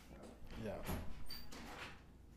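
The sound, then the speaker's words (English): A door slides and bumps shut: a scraping rush of movement, then a short muffled knock as it closes, with low indistinct voices murmuring. “Shut the door, bud.”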